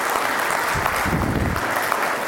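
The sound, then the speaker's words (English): A church audience bursts into steady applause to welcome new members into the church fellowship, a dense wash of many hands clapping at an even, fairly loud level throughout, with no voices standing out. “Please give them a round of applause to encourage them.”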